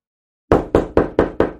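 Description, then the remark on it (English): Five heavy, evenly spaced knocks on a door after a brief silence, loud, each strike sharp with a short decaying thud. “You wake up to a loud knocking on your door.”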